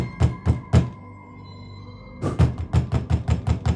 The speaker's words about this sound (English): He bangs on the door.